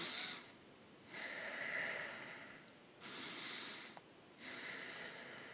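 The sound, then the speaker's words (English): Rapid, forceful high-chest breathing in and out through the nose, with three or four airy breath bursts in a steady, fairly quick rhythm and brief quieter pauses between them. No talking. “But it's this, instead of breathing the belly, it's all in the chest, so it's high chest breathing, and you just literally breathe in and out through your nose.”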